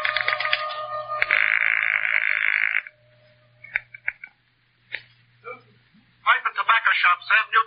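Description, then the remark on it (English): A telephone being dialed with an index finger: a harsh buzzing tone holds for a few seconds, then a scattered series of sharp clicks follows, and a voice starts talking at the end. “So, with nothing more to lose than another millimeter off the tip of my index finger, I went back to dialing.”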